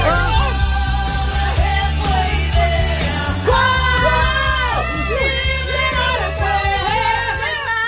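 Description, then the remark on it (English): A voice loudly belting out a rock chorus over a full, driving band, continuous and energetic throughout, with a rowdy, crowd-like edge to the singing. “You can't not yell that one.”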